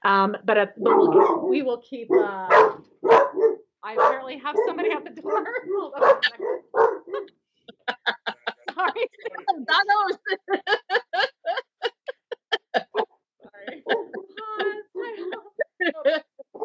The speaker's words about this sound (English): What is that? Anything? Oh, my dogs are barking at nothing.